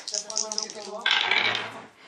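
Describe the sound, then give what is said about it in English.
Dice rattle and clatter across a hard surface, a short burst of sharp clicking that builds to a dense rolling clatter before settling, with no talking over it. “The dice like it. It's a 22.”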